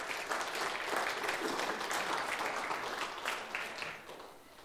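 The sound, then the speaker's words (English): Sustained applause from the Cornerstone church audience giving the Lord a round of applause, a dense steady patter of many hands clapping at even loudness for several seconds before easing slightly at the end. “So let's give the Lord a round of applause for that.”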